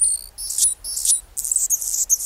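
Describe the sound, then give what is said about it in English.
A male Anna's hummingbird sings a thin, high-pitched, scratchy song of buzzy, insect-like bursts repeated in quick succession with short gaps, fairly loud, with no talking, on a chilly February morning near Seattle with the temperature below 40 degrees. “It's a hummingbird, a male Anna's hummingbird, whose throat and crown flash iridescent rose.”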